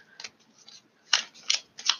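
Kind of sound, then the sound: household object, shuffling tarot cards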